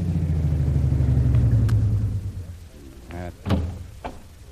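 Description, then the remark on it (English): The engine of a long, powerful car on Singapore's waterfront rumbles, then winds down and cuts off as it pulls in. A moment later a car door shuts with a solid thunk, followed by a lighter knock. “Okay, Kolu. Pull in here. This looks like the place.”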